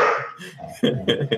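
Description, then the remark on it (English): A dog barks several times in quick, uneven bursts, the sharp yaps loud and rough against a brief noisy rush at the start. “I got a fierce dog here.”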